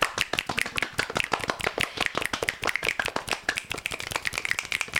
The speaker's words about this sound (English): He kept clapping, so I was like, I'm going to keep clapping.